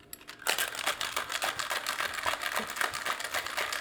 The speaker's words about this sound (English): I feel like at this point is when I use the cocktail shaker.